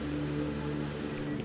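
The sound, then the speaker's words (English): A car engine runs with a steady, low idling hum as the car is parked at a farmhouse, holding even for a moment with no voices. “I park the car, ready to turn down her proposal when two figures emerge from the farmhouse.”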